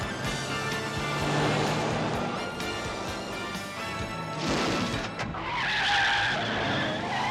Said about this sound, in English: Again, more wonderful car stunts and all arranged by Rémy Julien. Rémy Julien and his team, I think, are some of the best in the world for car stunts.